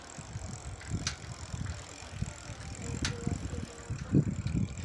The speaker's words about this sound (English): A white, well, I don't know what color it is, but a truck is on the loose in Cove Mind. Nobody knows who the driver is.